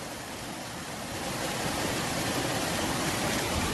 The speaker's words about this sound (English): You can probably hear in the background the rushing of the Montecito Creek. I'm going to hold the microphone out here just for a second so you can get a sense of this.